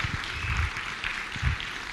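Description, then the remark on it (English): A crowd claps together, giving the Lord a round of applause during a sermon, in a steady, dense wash of applause with a few low thumps underneath, moderately loud and sustained for the whole moment, with no one speaking over it. “Come on, if you believe that, would you give the Lord a good round of applause?”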